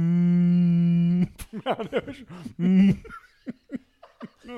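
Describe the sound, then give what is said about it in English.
A voice imitates whale sounds: one long, steady low moan, then a run of short warbling calls that swoop up and down, breaking into laughter-like bursts. “I'm not sure what that means, but no, the whale sounds.”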